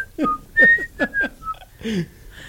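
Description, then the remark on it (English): A bright, thin whistled melody of several short notes weaves in and out, clear, while a voice sings or talks along underneath, in the intro song of a sitcom pilot. “That whistling.”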